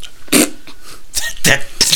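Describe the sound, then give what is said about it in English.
A person blows raspberry-like fart noises with their mouth, several short, buzzy bursts in quick succession, loud, with brief pauses between them. “Well, I don't actually fart. I just make that noise with my mouth.”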